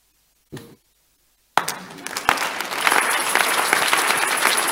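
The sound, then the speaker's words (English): A brief isolated sound, a pause, then an audience bursts into loud, sustained applause, dense overlapping claps that build and hold steady without letting up. “Stop clapping.”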